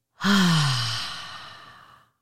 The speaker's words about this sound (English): Take a deep breath in. And breath out your mouth as loud as you can. You letting out all this frustration.